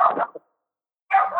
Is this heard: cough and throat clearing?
no